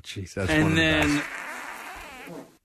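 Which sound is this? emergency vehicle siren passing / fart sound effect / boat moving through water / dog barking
fart sound effect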